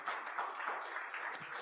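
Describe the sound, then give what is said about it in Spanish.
An audience applauds the Lord together, a dense, steady wash of many hands clapping at an even level for the whole stretch, with no voices standing out. “Hay que darle al Señor un fuerte aplauso.”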